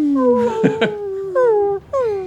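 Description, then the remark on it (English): A person imitates a pitiful animal howl: drawn-out whining wails with wavering, falling pitch, a brief break, then two more mournful cries, fairly loud. “I howl pitifully.”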